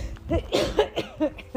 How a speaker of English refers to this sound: As I cough and splutter and prove that I'm not using my nebulizer as much as I should be.